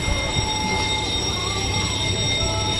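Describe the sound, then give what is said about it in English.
A factory bell calling the team back from lunch in a factory sewing army uniforms rings continuously, a steady, loud metallic ringing with sustained high overtones over a low mechanical rumble, holding unchanged for about three seconds without any talking. “What's that bell? Some of the team to come back from lunch.”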